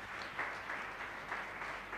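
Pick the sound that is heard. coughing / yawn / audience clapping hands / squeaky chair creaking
audience clapping hands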